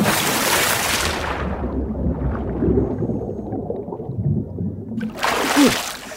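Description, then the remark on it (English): A person in a swimming costume does a big cannonball jump into a local swimming pool, crashing in loudly, then a muffled, churning underwater rumble before a second burst of splashing water near the end. “headed to the local pool, because the best way to answer a question about being in a pool is to be in a pool. Cannonball!”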